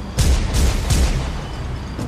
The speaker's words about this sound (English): Then Batman heard the sound of gunshots and leapt off the roof, seeing a shopkeeper with a gun chase after a thief.